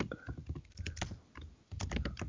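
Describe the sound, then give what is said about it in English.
Rapid typing on a computer keyboard to look up the Nintendo Power Glove, a dense run of clicky keystrokes with a brief pause midway before the tapping resumes just as busily. “Keyboard is so. Yeah. Weak. Yep. Yeah, sorry, I know, fucking just tippity-tapping.”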